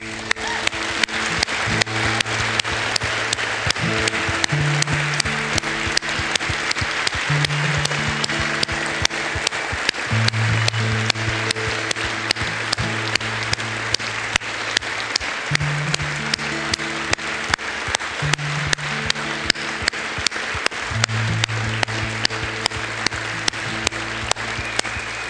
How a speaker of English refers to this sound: I wonder if we can by faith, put our eyes on God and bring our worship to Him as we applaud Him, King of Kings, Lord of Lords, risen from the dead, Jesus.